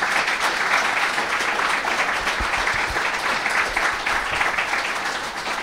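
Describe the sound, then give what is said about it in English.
Sustained applause from a large audience for the FEF authors, a dense, steady wash of many hands clapping at once, loud and even throughout with no voices standing out. “Can I please ask you to give a huge round of applause to the FEF authors?”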